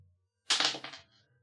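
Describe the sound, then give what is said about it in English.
A brief burst of clattering, with several quick hard knocks tumbling together and fading out within about half a second, like dice rattling across a surface. No one speaks. “Roll that dice.”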